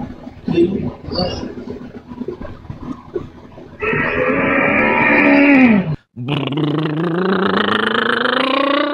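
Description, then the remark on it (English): A car engine starts up: after a rough, growling rumble, a loud harmonic roar drops in pitch, cuts out briefly, then surges back and climbs steadily as the engine revs. “That's starting the car.”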